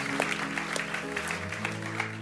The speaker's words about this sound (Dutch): Let's give the band a hand. Dank je, laten we de band een applaus geven. Done a great job, guys. Well done.